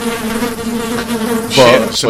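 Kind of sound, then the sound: insect, buzzing bees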